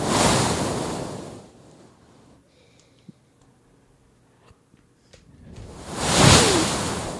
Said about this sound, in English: Stop. Stop making ocean noises or whatever that is. Wave noises. I just wanted to be comfortable. Because I bet everybody like to listen to the waves.